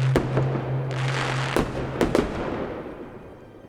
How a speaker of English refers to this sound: Like a few fireworks, don't you? That sounds awesome, doesn't it?